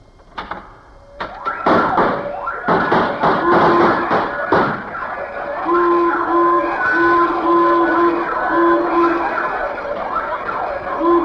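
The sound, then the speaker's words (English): A burst of metallic clicks and clanks as a safe is opened gives way to a loud burglar alarm, its tones pulsing in a steady repeating pattern that keeps sounding until the end, with no one talking. “Benny, who installed that alarm for you?”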